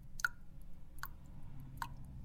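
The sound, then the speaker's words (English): Three drops of water fall one by one at a slow, steady pace, each a small bright plink with a short ringing tail, over a low, quiet background hum. “Can you hear the dripping?”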